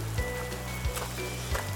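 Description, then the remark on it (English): Steady, dense hiss of rain that has been pouring down all day, with rivers of rainwater flowing down the roads, a low rumbling hum underneath and a few brief splashy bursts rising out of the constant wash of sound. “I'm fighting my way through the rain on my way into the club. It's been pouring down all day.”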